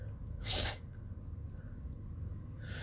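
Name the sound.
a big sneeze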